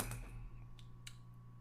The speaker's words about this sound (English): Yeah, I'll just get my keyboard and just clickety-clack on it in people's ears, too.